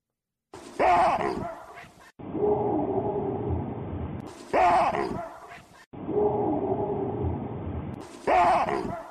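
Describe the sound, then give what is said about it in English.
A baboon barks loudly three times, each a harsh two-part wahoo call, with stretches of lower, rough, droning sound filling the gaps between the barks. “Okay, so what we're going to hear is what's called the baboon bark. It's a kind of like a wahoo sound”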